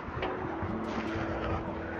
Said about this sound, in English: Ooh, there's a bit of heavy traffic on the main road below. I'm sure you can hear it. It really is a feature now.